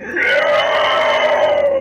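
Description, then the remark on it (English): A person imitates an unearthly shriek: one loud, sustained, piercing wail with a steady high pitch that holds for nearly two seconds before cutting off, with nothing else audible; the ungodly shriek let out as one by giant flaming black horse-like creatures. “And they, as one, they let out just an ungodly shriek, and the nearest one to Bartok just looks at you like that.”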